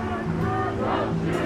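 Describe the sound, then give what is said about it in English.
A protest march crowd of tens of thousands in the streets, demanding change and justice: a dense, steady roar of many voices with rising shouts and cries layered over the constant babble, loud throughout the brief moment. “Of course, a protest march.”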